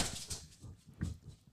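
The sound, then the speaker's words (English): A dog makes a few short, whiny vocal bursts, quick yelps and whimpers over about a second and a half, fairly quiet, with no talking. “Can I laugh at the dog? Because that was funny.”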